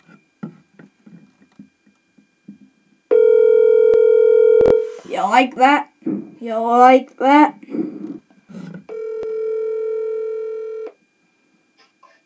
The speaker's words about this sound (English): So we're just going to give him a quick little ring, and we'll talk to him about playing band. So it's ringing.